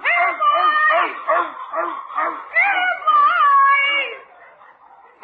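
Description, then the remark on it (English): A dog chasing the neighbor's chickens barks and yips excitedly in a rapid, steady string of sharp, high-pitched calls, loud, before trailing off into a softer whine at the end. “Why, George, that dog has to go.”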